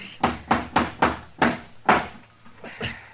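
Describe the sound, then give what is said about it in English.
A hammer pounds nails into a rotten, dry wooden door: about six sharp, evenly spaced strikes, loud, then a few lighter taps. No one speaks. “Now, let's just try one more nail.”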